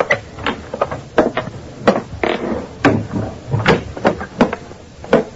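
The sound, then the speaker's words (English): A hall door is opened slowly and quietly, with a run of small clicks, knocks and creaks spread over several seconds and a faint low rumble underneath. No one speaks. “Then I quietly opened the hall door.”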